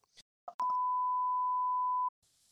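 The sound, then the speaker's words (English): A loud, steady censorship bleep holds one pitch for about a second and a half, masking a profane word, with clipped fragments of speech just before it and faint hiss after. “I'm sorry, that's a lot of beeps there for you,”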